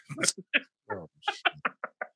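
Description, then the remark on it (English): A voice imitates knocking on a door: a quick series of about eight short, punchy vocal knocks in an uneven rhythm, fairly loud, with no other sound around them. “Knock, knock. Who's that?”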